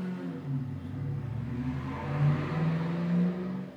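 A Ram Charger SUV engine revs loudly and climbs in pitch as the vehicle pulls away in Oklahoma, a steady low rumble rising and surging over a few seconds, with no voices.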